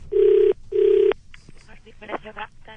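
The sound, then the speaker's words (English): Two long, steady ringback tones from a phone line on an outgoing call to a person chosen at random, each about half a second with a short gap between, then a voice answers and speech begins. “This is where I phone up somebody purely at random, dupe them into believing it's the census survey.”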